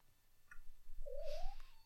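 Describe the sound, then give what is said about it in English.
A single small, soft meow from a female cat, rising slightly in pitch and lasting under half a second, over a low background rumble. A faint brief chirp comes just before it. “little meow from her.”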